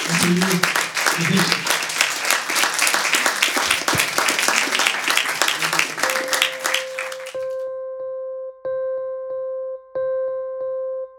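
A crowd bursts into sustained, dense applause with scattered cheers for about seven seconds, then the clapping cuts off as a steady, rhythmic electronic tone pattern takes over.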